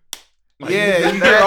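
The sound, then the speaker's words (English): A single sharp slap cracks out at the start as people slap each other with no audience, followed by a brief silence and then a loud, sustained voiced sound from a person. “Like you hear them cheering, like without audience, just like niggas just slapping each other. The sound just slapping.”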